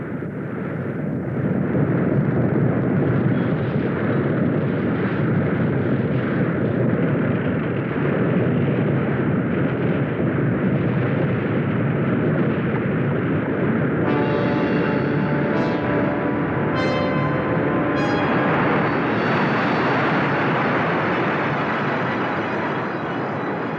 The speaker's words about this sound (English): At 5:36 p.m., the earth begins to rumble. The sailors hold on and keep filming.